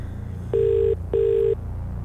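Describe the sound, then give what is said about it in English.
A phone ringing tone as heard while calling: two steady, pitched buzzy tones, each under half a second, separated by a brief pause, clear over a low background hum. “I mean, it's a perkier ringtone for some reason.”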